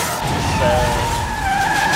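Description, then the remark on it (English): A steady, fairly loud road roar with a high, sustained tonal squeal running through it, like tires skidding on pavement amid heavy passing traffic at night. “There's a lot of fucking traffic tonight.”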